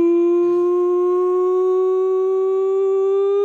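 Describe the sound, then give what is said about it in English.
A 'nonsense siren' sound effect sent in by a listener in Furness, marking the start of the nonsense rankings: one loud, sustained, buzzy tone that holds steady and creeps slightly upward in pitch for a few seconds, with no voices over it. “your nonsense siren. It is, which means it is time for your nonsense rankings this week.”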